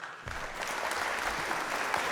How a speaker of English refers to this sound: Oh, well, so if there's no audience, then they must be piping in fucking canned laughter and canned applause and shit too. Oh, that's a nice touch. He just said there was no audience, and then you hear around of it, it's got to be fake applause.